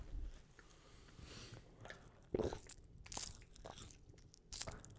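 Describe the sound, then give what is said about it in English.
ASMR crunching of crackers, with water, with several crisp, crackly bites and wet chewing in between, the sharpest crunch about halfway through, no talking. “Our trailer vid is ASMR with crackers and water.”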